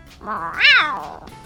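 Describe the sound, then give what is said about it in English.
A single drawn-out meow from a male tabby cat, clear, its pitch rising to a bright peak and then sliding back down, with no voices around it. “What a delightful stripey boy, a truly lovely tabby.”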